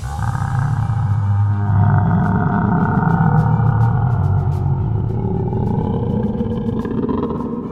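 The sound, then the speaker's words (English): A monstrous, deep bellow echoes out from above, roaring continuously for several seconds, loud and rumbling with a low, growling tone and a long echoing quality. No one speaks. “This bellow echoes out from above.”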